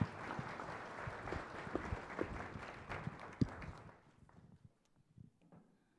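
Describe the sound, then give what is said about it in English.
An audience applauds the guests with dense, steady clapping for about four seconds as the host walks over, then the applause fades out and only a few scattered claps and faint footsteps remain. “Can you guys give them a round of applause as I make my way over?”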